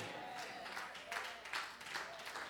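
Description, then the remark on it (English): Light, scattered applause from an audience, a soft patter of many hands clapping that rises in a few small swells before tapering, quiet overall and without any distinct voices. “This should be more clapping than that.”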